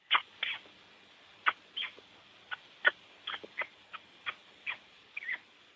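Turkey poults close to hatching, pecking their way out, peeping from inside their eggs: a dozen or so short, high, thin chirps in an irregular patter, some single, some doubled, soft against a quiet background with no talking.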